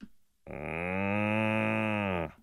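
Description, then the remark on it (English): A person imitates a cow with one long, steady moo, loud and held for nearly two seconds with no other sounds around it. “Yeah, give us your moo.”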